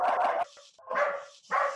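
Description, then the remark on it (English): A dog barks three times in quick succession, loud, each bark sharp with a brief pause between; no talking is heard. “Every show of ours goes to the dogs eventually.”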